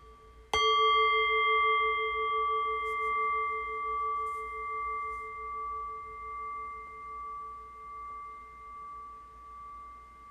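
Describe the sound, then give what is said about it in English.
A meditation bell is struck once and rings out alone, its bright, steady tones pulsing gently as they slowly fade over several seconds. “The invitation here once again is to follow the bell into the silence, really resting awareness on the fading bell.”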